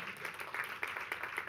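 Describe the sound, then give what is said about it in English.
One person in a church audience claps irregularly, a handful of soft, echoing claps over a steady hushed background. “And someone's clapping.”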